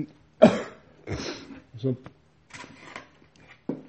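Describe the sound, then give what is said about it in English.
A person who has been coughing for the last hour coughs repeatedly in harsh, raspy bursts, about six of them spread unevenly over a few seconds, with brief pauses and some throat clearing between. “You've been choking for the last hour, bro. Drink something”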